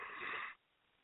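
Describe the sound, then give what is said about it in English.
A brief, breathy yawn, a half-second rush of airy exhalation that cuts off abruptly into near silence. “Excuse the yawns.”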